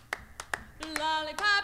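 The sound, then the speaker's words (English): Sharp, crisp handclaps snap out in a bouncy rhythm, three on their own before a pop song's sustained, bright harmonic notes swell in beneath the later claps. “All of the clapping that they did.”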